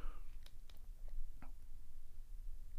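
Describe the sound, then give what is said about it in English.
Crunchy chewing as someone eats fish, with a handful of sharp, irregular crunches over a low, steady background rumble. No one speaks. “And y'all hear that crunch? It wasn't fish. It was fish. We're having fish.”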